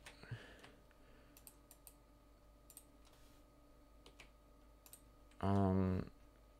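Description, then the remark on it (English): Sparse, irregular taps and clicks as someone types and clicks on a computer keyboard, soft, spread across several seconds before a short, loud burst of voice cuts in near the end. “You're gonna hear me typing on my keyboard and clicking.”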